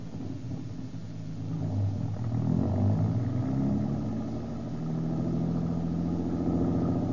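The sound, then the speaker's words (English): A car engine rumbles low and steady as the vehicle drives off up the street, swelling briefly in the first few seconds and then holding an even drone throughout, with no voices. “Hop in. Where do we go now? Just up the street away, out of the general's line of vision.”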